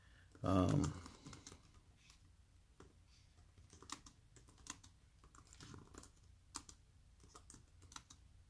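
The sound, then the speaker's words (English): Rapid, irregular clicking of keys on a computer keyboard as someone types in a search on how many people died of COVID in America, with a louder burst near the start and quieter taps continuing steadily throughout. “Sorry, I'm just typing in.”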